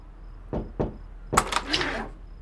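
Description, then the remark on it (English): Two quick, sharp knocks on a motel room door, followed a moment later by a louder burst of clattering, rustling noise lasting about half a second. “Just don't knock.”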